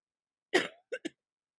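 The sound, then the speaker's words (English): A person coughs at a microphone: a harsh cough burst followed by two shorter, quieter coughs in quick succession, with silence around them. “That's the cough I was trying not to do on the mic, but y'all had to get that.”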